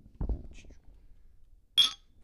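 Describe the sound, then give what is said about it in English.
Glasses of pumpkin beer clink together once in a bright, ringing toast, preceded by a soft low bump and faint rustling against an otherwise quiet background. “All right, cheers. Cheers.”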